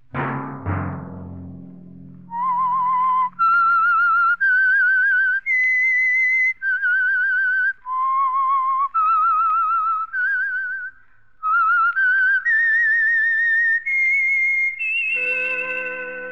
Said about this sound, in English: Let that whistle be your signal for the Signal Oil program, The Whistler, each Sunday night at this same time.